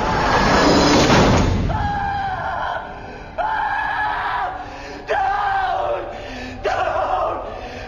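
A man screams and yells excitedly in the background after a game win, in a series of long, loud bursts, about four in a row, after a brief noisy rush at the start, with no other talking.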